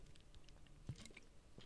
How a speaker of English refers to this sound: Oh, I need to learn to drink water, more water during these podcasts, because dang, my throat gets insanely parched.